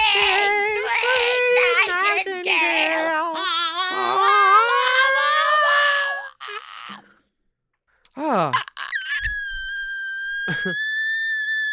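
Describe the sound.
A voice sings a wavering, vibrato-laden melody, pauses briefly, then rises into thin, piercing whistle-register tones held steady at a very high pitch until the end.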